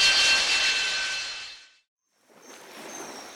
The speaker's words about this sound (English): All I gotta say is I'm glad we don't have another passenger. This four-seat jump jet can only take so much.